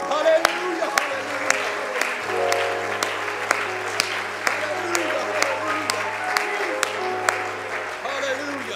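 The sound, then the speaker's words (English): A church audience applauds the praise team steadily for several seconds, a dense wash of clapping with sharper claps landing in a regular beat, over sustained keyboard tones and a low hum. “I think it'd be in order to give him one more hand clap.”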